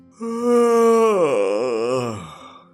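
A long, drawn-out yawn from a single voice, starting high and steady, then sliding down with a wavering, groaning quality before trailing off. Close and fairly loud, with no other sounds around it.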